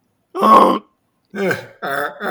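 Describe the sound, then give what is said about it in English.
A person makes three loud, throaty honking noises, trying to imitate a goose. The bursts are gravelly and uneven, with short silences between them, and the first is the harshest. “I can't make goose noises. Sounds like when I try and make the Chewbacca noises.”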